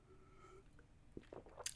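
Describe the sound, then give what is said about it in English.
Someone takes a small, quiet sip of water, a few soft wet slurps and mouth clicks near the end after a near-silent pause, with no talking. “So there's gonna be a little silence, you know, for a little bit, because I'm taking a little sippy sip of water right here.”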